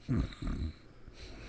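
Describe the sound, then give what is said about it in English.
Two loud, raspy breaths drawn through the nose, wheezy, almost like snoring, with no talking in between. “Have you ever tried breathing through your nose?”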